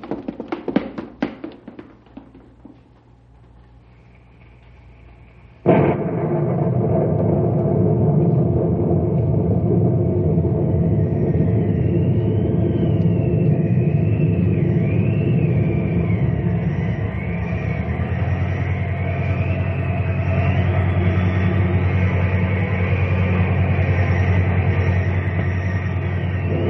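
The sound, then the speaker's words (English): A few light taps and knocks, then a tornado's roar bursts in suddenly and holds loud and steady, with a thin, wavering whistle of wind howling above the deep rumble, as the tornado tears at 600 miles an hour into Knotty Pine, sucking up the lumber yard. “Roar at 600 miles an hour into Knotty Pine. The lumber yard disappears into the giant vacuum cleaner.”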